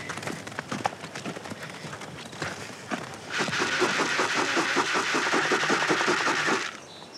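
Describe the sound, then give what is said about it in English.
Irregular thuds of hooves on the ground draw closer, then swell into a louder, dense rumble of several horses trotting in for a few seconds before easing off, as they are called over with a bucket of oats. No voices. “Now they're coming.”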